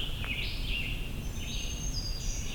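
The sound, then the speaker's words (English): A black-throated green warbler sings a short series of high, buzzy whistled notes that rise and slide, soft over a steady low rumble of outdoor background noise. “Dee-dee-dee-doo-dee. Was the black-throated green.”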